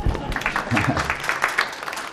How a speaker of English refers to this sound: Thank you. Round of applause for my brother.